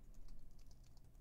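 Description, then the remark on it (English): Rapid, steady typing on a computer keyboard while lining up emails, a quick run of light key clicks with no voices over it. “I hear you typing away like a little jobber.”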